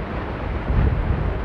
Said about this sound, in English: At every new cascade of lava, the Earth rumbles like thunder from an alien world. We watched as lava poured out of the crater, changing Iceland's map forever.